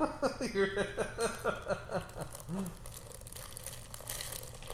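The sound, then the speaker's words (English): Crinkling and rustling of a snack wrapper while people are eating, soft and irregular, with muffled voices in the first half before the crackly handling continues more faintly on its own. “Sorry for all the rustling”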